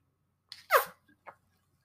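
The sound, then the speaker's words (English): A quick sip from a water bottle, with a soft airy hiss giving way to a short, squeaky whistle-like gurgle, then a faint little puff of air; brief, no talking. “Of course, it has to make a little funny noise out of my water bottle.”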